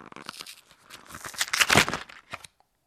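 The seal of a box of pasta being lifted, giving a rapid run of dry, crackling ticks that swell into a louder burst of popping, then stop abruptly into silence. No voices.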